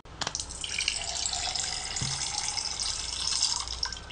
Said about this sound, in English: You can hear the difference between hot water and cold water. Just by sound. Like, okay. Running water. So, I'm going to put you guys to the test.